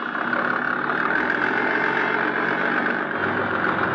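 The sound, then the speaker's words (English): A boat engine drones steadily and loudly, a continuous mid-pitched rumble with no breaks or voices, holding an even level from start to finish. The boat is shoving off from the waterfront, heading out of the harbor toward Lagos Island. “My boat was all ready, so I went aboard and shoved off.”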